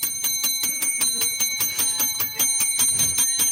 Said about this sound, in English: That's the bell. We ring the bell when we all get excited here.